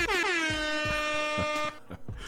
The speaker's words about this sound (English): Sound man, give me my air horns, dog.